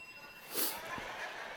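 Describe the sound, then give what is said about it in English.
A teacher's hand bell, used as a 'Round 1' sound effect during a sermon, rings once with a quick bright strike, its thin high overtones lingering faintly before fading into quiet background hiss. No one speaks. “But of course, I asked my wife a couple days ago, hey, do we have a bell or anything?”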